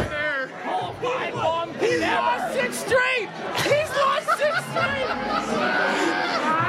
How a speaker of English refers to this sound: Wow. Resounding boos. Resounding boos.